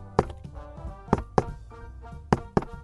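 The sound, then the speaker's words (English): Several sharp knocks on a door in an uneven pattern, a single rap followed by two quick pairs, as someone does a secret knock, over a faint steady tonal background with no talking. “Happen to know it's longer than just two knocks.”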